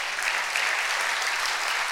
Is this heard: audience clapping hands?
yes